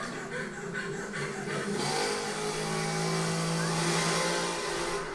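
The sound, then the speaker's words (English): An engine bought at Lowe's revs in a steady, loud roar, its droning pitch climbing and holding high for several seconds with a rough, buzzing edge. “He's like, you hear this engine?”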